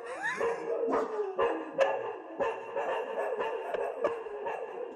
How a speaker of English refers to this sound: There were some dogs barking.